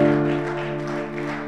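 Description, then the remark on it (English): An audience claps steadily as a clap offering to Jesus, many hands blending into a dense, continuous wash of applause over a sustained, held keyboard chord. Loudness stays fairly even throughout, with no voices. “Give Jesus a big clap offering.”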